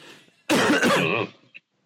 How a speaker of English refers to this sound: I cough in everybody's direction now. I just sit there and fucking hack... try to look as COVID-y